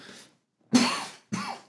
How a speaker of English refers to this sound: there goes that cough again.